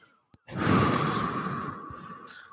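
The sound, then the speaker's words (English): A single long, heavy breath, drawn out and noisy, after a brief silence and a faint click, with a rough, unsettling rasp through its whole length. “What's with the serial killer breathing?”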